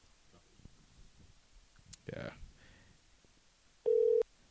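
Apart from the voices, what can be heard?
phone call tones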